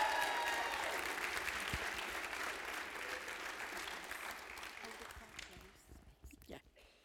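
An audience applauds loudly, with whoops and cheers rising over the clapping at the start, then the applause thins out and fades away to scattered claps.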